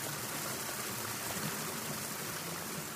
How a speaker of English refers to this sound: Oh, I'm just walking past a little waterfall that's falling down the cliff. Can you hear the water?